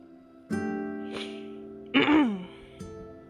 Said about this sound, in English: I had to clear my throat.